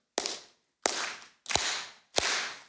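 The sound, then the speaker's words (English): Four loud, sharp claps from a service crowd clapping together in unison, evenly spaced at a steady beat, each burst ringing out briefly before the next. No one speaks. “All right, we're gonna clap together.”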